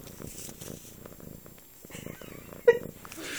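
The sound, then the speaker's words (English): A kitten purrs in a steady, rhythmic low rumble, with a brief higher squeak or chirp near the end. “Ooh, listen to the kitten purr.”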